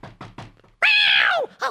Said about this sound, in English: So let me go around the back. I'll just knock on the back door. I'll just knock on the back door.